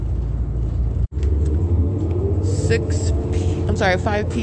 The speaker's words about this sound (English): This bus being driven by employee number 3214, by the way. Employee 3214. 8WDK547. Inland Empire Boulevard. All right, as you hear from Archibald turning on Inland Empire, this is Route 61.